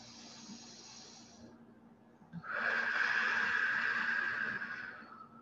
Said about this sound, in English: And again. And we'll take one more. Really breathing right into your belly, all the way up into your heart.